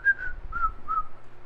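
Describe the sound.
A person whistles a short tune of three sustained notes while walking over to a man and a woman sitting on a bench, clear, with low rumbling background noise and no talking.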